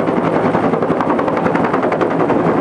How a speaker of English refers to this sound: The helicopter makes multiple trips back and forth.